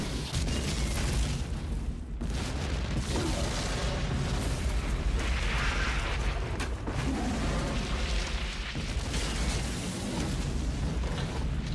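A big gasoline explosion with a huge fireball: a loud, sustained roar and deep rumble that stays dense and forceful for about twelve seconds, with wildcat noises dubbed over it and no voices.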